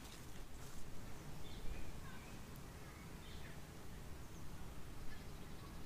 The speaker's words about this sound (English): I paused there for a second because there was a good gust of wind that came through, and hopefully it's not too windy.